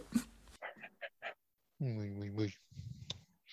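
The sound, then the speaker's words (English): A dog being petted pants in a quick run of short, breathy huffs, then lets out a drawn-out, wavering whimper before more soft panting and snuffling. “You were fussing your dog there, and I I clicked on pause just so, I don't know, I just clicked on pause.”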